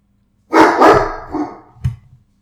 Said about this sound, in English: Sorry, my dog's barking.